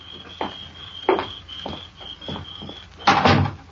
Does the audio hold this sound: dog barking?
no